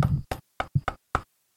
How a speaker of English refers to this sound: I think there's been a knock at the door